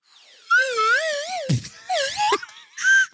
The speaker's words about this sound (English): Christ, it sounds unhealthy. You're slobbering all over that slide whistle on that one.